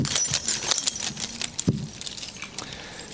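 A bunch of keys jangles and clinks as it is picked up and held during a short prayer, a few seconds of bright metallic rattling with a small thump partway through and no one speaking.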